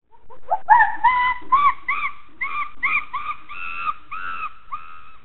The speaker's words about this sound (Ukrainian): Голос шимпанзе.